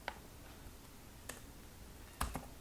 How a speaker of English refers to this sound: That's one thing you'll get used to, is just typing gibberish really quick.